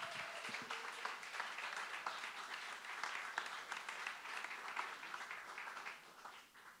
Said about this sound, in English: Give a big round of applause for the best dressed man in the house, please, Mr. Jason Scott.